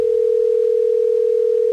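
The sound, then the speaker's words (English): A steady, unbroken telephone dial tone hums at a constant pitch for nearly two seconds, loud, with no voices or other sounds around it, as a phone call is being placed. “We're going to get him on the phone.”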